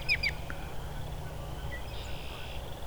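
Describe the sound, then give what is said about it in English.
A robin gives a couple of sharp, quick call notes, not song, near the start, then falls quiet over a steady low outdoor rumble, with faint other bird sounds. “this robin's not singing, it's just making a lot of calls, vocalizations.”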